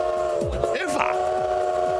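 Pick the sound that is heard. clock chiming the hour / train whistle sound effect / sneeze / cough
train whistle sound effect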